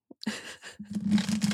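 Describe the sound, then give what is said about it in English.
Tarot cards being shuffled: a quick papery flick, then a sustained, fluttering rustle of cards riffling together for about a second, fairly loud, with no voices. “We'll give them one more good shuffle.”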